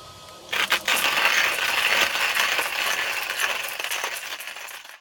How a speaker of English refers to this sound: So, I'm going to go ahead and grind a bit of this. I've just got my hand grinder here, so I'm going to go ahead and grind it and come back. I'm not going to make you listen to me grind coffee for a minute or two.